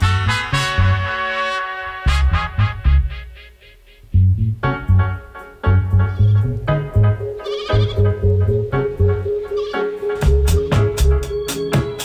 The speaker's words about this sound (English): Goats in the original song? No, they're not. They're throwing you off, huh? You don't know what you're hearing.